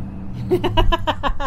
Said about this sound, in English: It was a truck, and they like to rev.